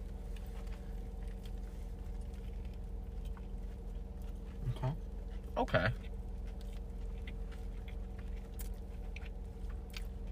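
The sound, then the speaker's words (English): Someone bites into a large fried chicken sandwich with a couple of short crunchy bursts, then soft intermittent chewing over a steady low hum, with a voice briefly speaking. “Take a bite of this one.”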